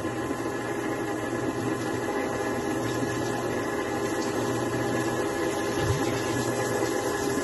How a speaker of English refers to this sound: All right, we'll turn the water off.